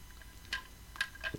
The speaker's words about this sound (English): Took a sip of water there.